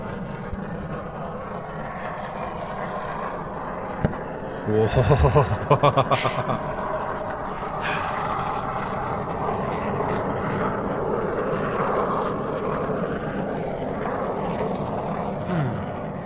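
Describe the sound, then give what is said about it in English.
A low, steady aircraft engine drone with a throbbing, propeller-like hum runs throughout, broken by a brief cluster of sharp rattling clicks partway through. “It is a human-made craft that flies through the air.”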